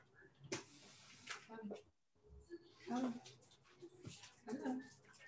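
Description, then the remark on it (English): A puppy named Luna whimpers in a few short, high whines spread across several seconds, with people talking quietly underneath. “Puppy, there's a puppy. You know, she's peeking her big head in.”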